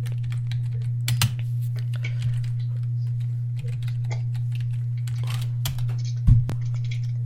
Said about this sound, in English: Ooh, Lars Sullivan. I'm typing Lars Sullivan.